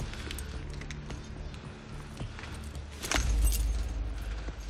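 Keys jingle in a few quick metallic shakes as they are handed over, with a louder rattle near the end, over a steady low rumble of an idling vehicle.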